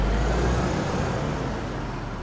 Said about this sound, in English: Sarah gets into the car and quickly drives away.